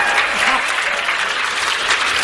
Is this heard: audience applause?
yes